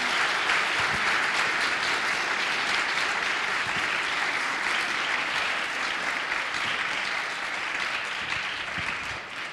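Sustained applause from an audience, a dense steady patter of many hands clapping, holding loud for several seconds before easing slightly at the end.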